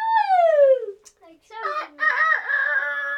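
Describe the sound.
A person loudly imitates a rooster's crow: a falling, strained cry, a brief pause, then a longer wavering call that holds to the end.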